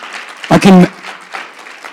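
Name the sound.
audience clapping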